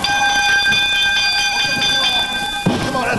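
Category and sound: signal or alarm, wrestling ring bell ringing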